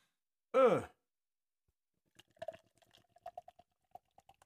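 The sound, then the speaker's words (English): A 32-ounce bottle of 11.1% beer being opened: a short, loud voiced sweep at the start, then a pause, followed by a scatter of small clicks, fizzing crackles and soft liquid glugs. “So I'm going to crack this 32-ouncer.”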